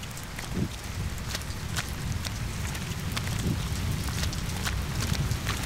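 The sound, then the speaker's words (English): Steady rain falls with a constant hiss, punctuated by scattered sharp drips and taps, plus a few low thuds like footsteps or hooves; no one speaks. “It's raining.”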